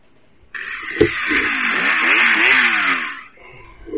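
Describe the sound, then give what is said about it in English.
A chainsaw roars to life and runs for about three seconds, a harsh, buzzing whine whose pitch surges up and down as it revs, then cuts off abruptly. “Is that a motorcycle or something? No, it's a chainsaw.”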